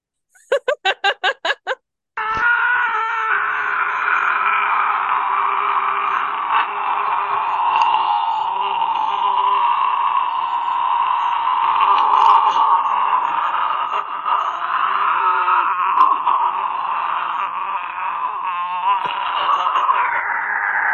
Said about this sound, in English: This is his record breaking. Scream. So he says that no one's done a longer than an 18-second scream. That was …. …. Oh. So, anyways, here it is. He did this from his grandma's attic too.